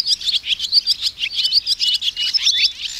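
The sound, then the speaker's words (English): A busy stream of high, rapid chirps and twitters from several swallows, overlapping continuously, with no pauses or voices. “Tree swallows often join the violet greens before they all begin their southbound migration to Mexico and Central America.”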